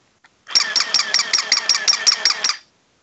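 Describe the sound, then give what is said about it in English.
A mechanical toy dog gives off a whirring, grinding noise lasting about two seconds, with rapid regular pulses stacked on a buzzy, high-pitched tone, loud and steady with no talking over it. “Are you it's grinding a, pepper? That or? Sounds like a toy robot. It's just a toy dog that I found.”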